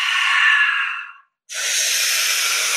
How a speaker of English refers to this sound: Last push. Exhale. Exhale. Almost done. Last minute. Exhale. Breathing even more than ever. Exhale.